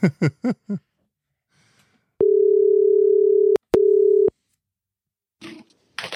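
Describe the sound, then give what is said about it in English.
A steady, loud electronic ringing tone of an outgoing phone call hums for over a second, breaks with a sharp click, then briefly resumes. A few quick beeps come before it, and a rustling noise follows. “The phone is ringing.”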